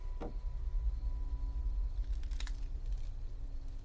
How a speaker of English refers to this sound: I heard a door open and footsteps crunching across broken glass.